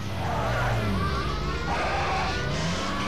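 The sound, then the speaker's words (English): A car engine drones steadily and loudly throughout as the car is driven into a house, with high squealing tones like tires skidding sliding in and out over the motor's hum. “We proceeded to drive the car into the house.”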